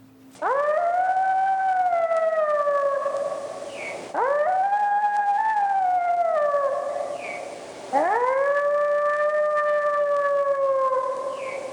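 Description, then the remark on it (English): A 3-month-old wolf pup howls three times in a row, each long, rising-then-falling wail sustained for about four seconds, loud with no other sounds around it. “Okay, even though that's a 3-month-old pup, that's still kind of terrifying.”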